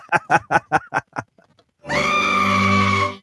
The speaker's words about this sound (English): That was a goat, folks.